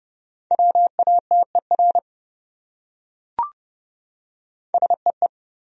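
Morse code sending words from a list of the top 100 common words at a brisk 30 words per minute: a steady, mid-pitched tone keyed into quick dots and dashes, forming two short bursts separated by a pause with a single soft click.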